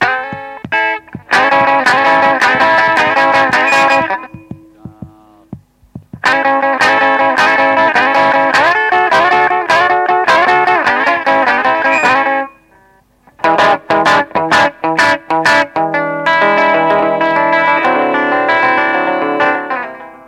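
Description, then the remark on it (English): Loud, dense tones drenched in studio echo during a recording session with two musicians, with repeats smearing into each other, broken by two brief gaps and a cluster of sharp percussive hits near the end. No one speaks. “… is impressed with the more subtle echo.”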